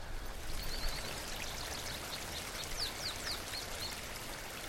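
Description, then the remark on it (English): Frijoles Creek flows steadily along a canyon bottom in Bandelier, through a forest of old ponderosa pine, Douglas fir and Gambel oak, with a broad, continuous rushing and babbling of water. Faint high chirps, like small birds, flick in now and then above the stream. “Frijoles Creek runs through a beautiful forest of old ponderosa pine, Douglas fir, and gamble oak along the canyon bottom here in Bandelier.”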